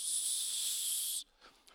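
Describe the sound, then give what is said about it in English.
A steady, bright hiss of aerosol OFF! insect repellent spraying for about a second, cutting off abruptly, followed by faint soft rustling. “I'm spraying off right now.”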